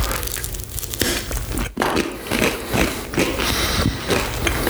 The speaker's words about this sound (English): I like that. I don't like crunch on a lot of things, but I do like a crunch on my toasted round.